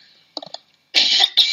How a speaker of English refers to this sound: Sorry for coughing.